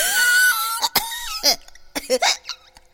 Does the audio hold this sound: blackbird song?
no